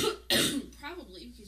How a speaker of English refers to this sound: I have to cough again.